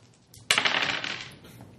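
Dice clatter onto a hard surface with a sharp first hit, then a quick run of rattling, tumbling clicks that fade over about a second. No one speaks.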